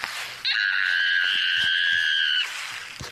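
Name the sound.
fisher cat screaming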